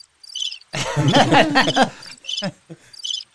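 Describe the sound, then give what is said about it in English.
Crickets chirp in quick, rhythmic pulsing bursts at the start and end, interrupted in the middle by a louder stretch of voice-like sound before the chirping resumes. “Crickets.”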